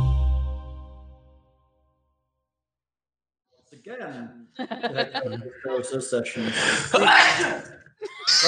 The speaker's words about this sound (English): We got a giant sneezing.